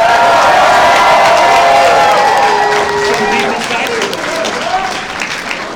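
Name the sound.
audience applause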